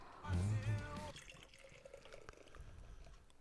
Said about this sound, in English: Nice sounding pour there. Got some head on it. A lot of head on that beer. A lot of head on that beer, man.